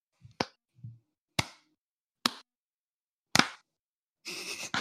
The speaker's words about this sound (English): All right, I just need everyone to clap so I can sync up the audio later.